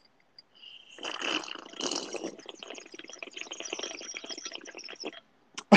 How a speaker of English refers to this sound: clink, clink goes the iced coffee.